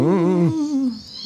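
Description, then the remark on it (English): A cat lets out a single loud, wavering squeal lasting about a second, its tone bending slightly before trailing off into a thin, faint hiss. No one speaks over it. “I heard a high-pitched squeal. It was probably our cat.”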